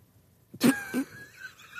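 A sudden sneeze attack: one sharp, explosive sneeze followed quickly by a second, softer burst, with no talking around them.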